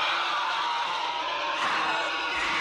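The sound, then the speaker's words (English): A harsh, piercing, inhuman screech from the pod people in the film Invasion of the Body Snatchers holds steady and loud for a few seconds. It is shrill and raspy like a monstrous creature's wail, with no voices speaking. “And then, of course, as we've talked about throughout Invasion of the Body Snatchers, there's not only music, but then there's the sounds that come out of the pod people, which is like a kind of a screech.”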